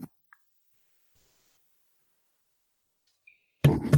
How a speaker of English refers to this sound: All right, I got a little bit of coughing to do, so 1 second.